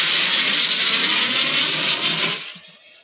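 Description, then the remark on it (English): A loud, steady jet afterburner sound effect from a video game, a bright hissing rush that holds for a couple of seconds and then drops off quickly into quiet. No voices are heard. “It sounded more like afterburner sound effect. That's what it was. It was a jet.”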